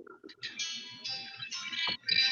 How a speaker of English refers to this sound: Whose music's playing? My phone's going off.